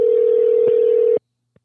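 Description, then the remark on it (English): A steady, loud telephone tone hums for just over a second with a tiny blip partway, then cuts off abruptly, leaving a short silence and a faint click as the call forwards. “Or maybe it forwards to another phone. I think maybe that's what that little pause was.”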